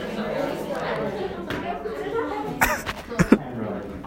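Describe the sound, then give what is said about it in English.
Two or three sharp, loud coughs right up against the microphone, with muffled chatter and light laughter running underneath. “Coughs to the mic.”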